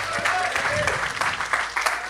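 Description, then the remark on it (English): A live audience cheers and claps for a band, loudly and steadily, a dense wash of applause with whoops and shouts rising through it over about two seconds. “Who, according to that cheer, should have been headlining tonight.”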